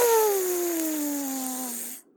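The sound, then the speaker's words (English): A steady hiss of air escaping as zombies deflate when Joey uses a card in a duel, with a thin whining tone that slowly drops in pitch, lasting about two seconds before cutting off abruptly. “You actually hear a little, like, air hiss, like a...”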